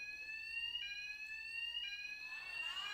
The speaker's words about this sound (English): Fire alarm, right? See, you're familiar with these sounds.